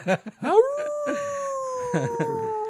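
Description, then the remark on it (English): A voice imitates a wolf howling: after a couple of short vocal bursts, one long howl rises, holds steady and slowly sinks over about two seconds. “So I like the ones that sound like a wolf howling.”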